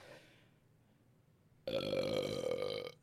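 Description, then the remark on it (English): A single long, deep burp erupts loud after a brief quiet moment, rumbling for over a second with a resonant, bellowing tone before cutting off abruptly. “I'm releasing one deep, bellowing burp.”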